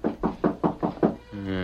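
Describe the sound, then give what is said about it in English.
Six quick, evenly spaced, firm raps on a ranch house door, followed by a short sustained tonal sound, like a bleat, as the knocking stops. “Bevan was surprised by a rap on the door.”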